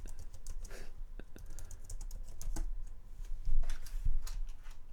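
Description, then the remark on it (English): Rapid, irregular clicking of keys being typed on a computer keyboard while searching on Google, a steady flurry of sharp taps with brief pauses, over a low background hum and no talking. “Wait, hang on, I'm Googling it.”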